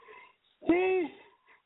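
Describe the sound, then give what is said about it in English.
A single loud, vocalized yawn: a sudden breathy onset, then a drawn-out voiced groan whose pitch sags slightly before trailing off, with faint murmuring before and after. “Excuse the yawning.”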